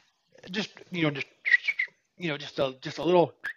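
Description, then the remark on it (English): A person imitates a small bird's whistle with a run of short, chirpy vocal bursts and a few thin whistled notes, mostly fairly loud with brief pauses between them. “What was that whistle like? Like what it sound like?”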